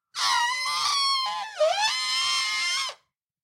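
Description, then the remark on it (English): A person imitates an elephant trumpeting with one loud, brassy, strained cry that lasts about three seconds, holding steady before dipping in pitch partway through and rising again until it abruptly ends. “Pretty good elephant sound, huh?”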